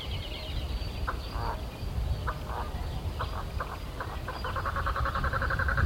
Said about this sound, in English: Is that a duck? Is that a duck?